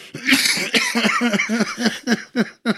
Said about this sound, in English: I didn't want to cough into the mic. I was getting ready to say something, and all of a sudden the cough came on, and I don't even know what I was going to say.